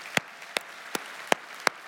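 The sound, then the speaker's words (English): Sparse, faint applause for student and kids leaders: five distinct claps land at a slow, even pace with quiet between them, thin rather than a full crowd ovation. No one speaks. “And I think they deserve some applause today for their faithfulness.”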